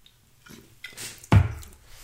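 Someone takes a sip of beer: soft wet mouth noises, then one louder gulping, slurping burst, with no talking.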